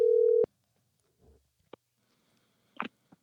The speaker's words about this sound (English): Let's see if I can find him again here. You may hear his phone ringing. There it is.